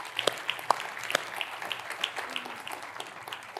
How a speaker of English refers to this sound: Sure, you can clap for that. You can clap for that.